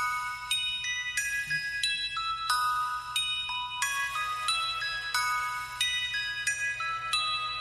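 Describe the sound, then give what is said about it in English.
A new, bassier ice cream truck jingle made with Good Humor: a bright, chiming melody of steady, evenly spaced notes over a constant low bass hum, playing loud with no voices. “he teamed up with Good Humor to make a new song that is a little bit more bassier, and it sounds like this.”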